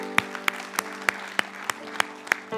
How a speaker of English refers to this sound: But we're going to make mistakes. We need to applaud that. Come on, let's applaud that.